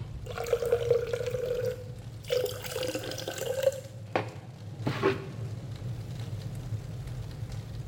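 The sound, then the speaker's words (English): Wine pours into a cup in two gurgling streams whose pitch rises as the cup fills, followed by a couple of soft clinks, over a low steady background rumble. “Let me pour you some wine.”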